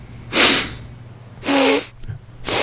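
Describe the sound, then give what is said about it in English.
Three sharp, breathy sniffs spaced about a second apart, each a short burst of airy hiss through the nose, fairly loud with no talking around them. “Sniffles more than Trump. He sniffs.”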